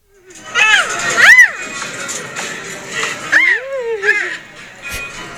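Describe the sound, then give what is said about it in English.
A baby girl, nearly one year old, lets out a series of high, piercing squeals and squawks, four or five bursts in quick succession, over the steady murmur and bustle of a busy grocery store. “She sounds like a little bird, dude. That's her in the grocery store, just squawking away.”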